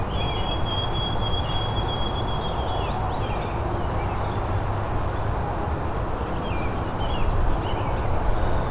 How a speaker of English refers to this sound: It's a brown-headed cowbird too.